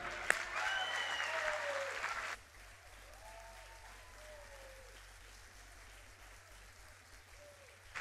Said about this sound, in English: Somebody clap.